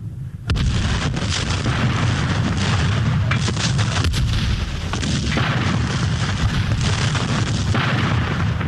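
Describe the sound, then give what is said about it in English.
Heavy, continuous rumbling barrage of cannon fire on Fort Sumter: dense low booms rolling over one another with sharp cracks mixed in, loud and sustained for several seconds with no voices. “All the pent-up hatred of the past months and years is voiced in the thunder of these cannon, and the people seem almost beside themselves in the exaltation of a freedom they deem already won.”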